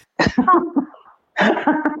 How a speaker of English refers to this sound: Don't get me laughing because I start coughing.